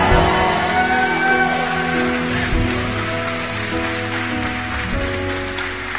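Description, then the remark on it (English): A crowd claps steadily in a dense, continuous patter of many hands, giving God a hand clap, while sustained organ or keyboard chords hold underneath for the full six seconds. “Come on, give God a big old hand clap.”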